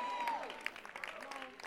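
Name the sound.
audience clapping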